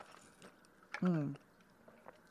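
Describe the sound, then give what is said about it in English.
A quick slurping sip of coffee followed by a short, low voiced 'mm'-like swallow sound, set against a quiet background. “I'm going to take a sip of my coffee.”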